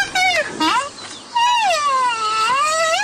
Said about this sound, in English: That's a baby rhino. Aww. That's what baby rhino sound like.